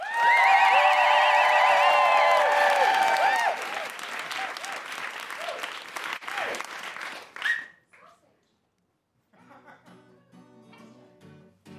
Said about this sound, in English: Please welcome, with your best clapping and woohooing, Steph Masucci.